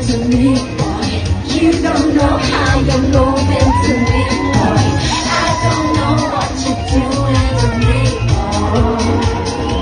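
A huge outdoor crowd at the Mighty Hoopla festival screams and cheers loudly and continuously, with high-pitched shrieks and whoops rising over a dense wall of noise for the whole stretch.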